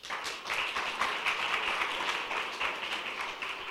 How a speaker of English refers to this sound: That's why I was so impressed when a lot of you came for prayer meeting at short notice. Clap for yourselves.